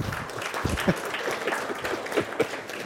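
Audience applause: a steady, dense patter of many hands clapping at moderate loudness, with a few sharper individual claps standing out, continuing evenly throughout.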